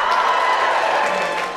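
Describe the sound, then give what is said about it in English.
An audience cheers and whoops in a loud, steady roar, with scattered clapping mixed in, sustained evenly without a break, as thirdborn children in the crowd are asked to cheer. “Give me a cheer, thirdborn children.”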